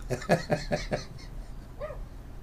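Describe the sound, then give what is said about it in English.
A dog named Willie barks outside in a quick run of five or six sharp yaps, muffled, then lets out a short higher whine before falling quiet. “I can hear Willie out there starting to bark.”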